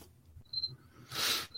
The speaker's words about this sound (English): Some crickets. Some crickets.